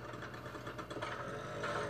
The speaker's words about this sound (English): He's on, like, a moped. Yeah, like, it's not a dirt bike, it's not it's a moped. Yeah. It's essentially a motorized bicycle.